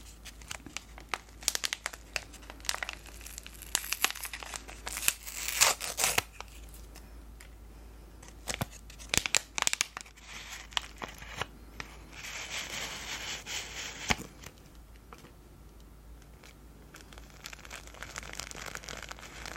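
The wrapper of a caffeine-free tea bag, said to support a good night's sleep, is torn open with bursts of crisp crinkling and ripping, irregular and moderately loud, separated by softer rustling and handling noises. No one speaks.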